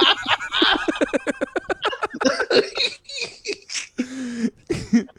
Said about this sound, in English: You didn't want to have an aggressive coughing fit on mic. My bad.